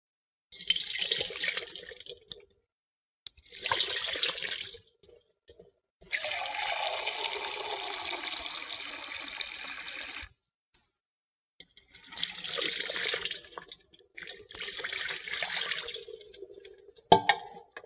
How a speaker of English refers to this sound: You hold the hand this way so that everything is exposed. Your hand is totally exposed to the water. And you pour it twice.